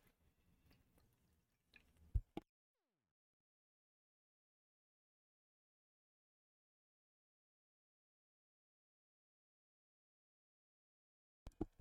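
Quiet, brief wet sipping and swallowing noises, a small cluster near the start, a long stretch of silence, then another short burst of slurps at the end. No one speaks.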